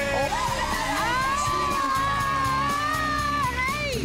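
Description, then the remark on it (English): A large crowd screams and cheers in welcome, loud and sustained for the full four seconds, with high-pitched whoops and shrieks rising above the roar. “Gosh, I was trying to scream louder than you, but you know, I have no scream in me.”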